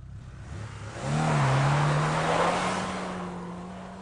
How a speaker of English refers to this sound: I love ice racing, and that E36 is getting after it. So rad.